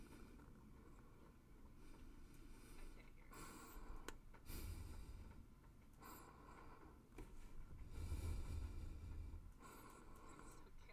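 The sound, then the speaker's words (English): Close, airy breaths sit right on the microphone, with several louder whooshing exhales and snorty bursts rising over a low rumbling background. “I can hear your breathing.”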